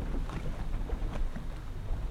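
Steady low rumble of a boat moving over water, with gusty wind buffeting the microphone throughout. Continuous, with no voices.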